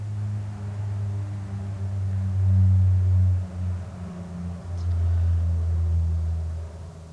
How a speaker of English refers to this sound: I'll just wait for the plane.